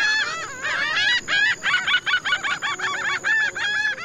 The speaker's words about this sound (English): A 180 bird species live in the Rio Lagartos Biosphere Reserve, including Caribbean flamingos, herons, storks, and kingfishers.